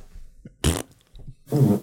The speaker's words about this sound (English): Just laughing at fart noises, dude.